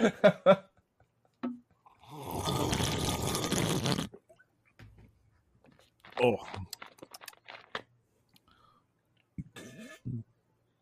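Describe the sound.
A fizzy, gurgling slurp from a 2-liter soda bottle, taken as a toast, lasts about two seconds, followed by a short low burp-like sound back into the bottle. Brief bits of talk and laughter come before and after.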